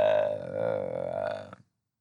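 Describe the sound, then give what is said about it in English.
A single drawn-out vocal yawn lasting about a second and a half, a steady, buzzy voiced tone that holds fairly level before breaking off abruptly, with no talking around it. “Trying to, well, I'm gonna yawn, and”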